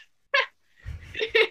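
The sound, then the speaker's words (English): A voice imitates a duck's honk: a short, nasal burst, a brief pause, then a longer, rougher two-part honk, fairly loud, with no other talk. “Who's going around animal teats going, like, duck?”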